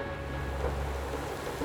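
Steady, dense rain hisses throughout with a deep, continuous rumble of thunder underneath, a constant stormy wash with no voices, as a lightning bolt is caught by an iron rod and sent through a wire into the ground.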